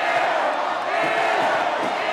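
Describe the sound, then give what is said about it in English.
The Maryland student-section crowd boos and taunts visiting star Clark as she sets up for a shot, roaring and jeering continuously in a loud, steady wash of many voices, with scattered shouts rising out of the din and no pause throughout. “Every time she sets up for a shot in front of the Maryland student section, crowd taunts her.”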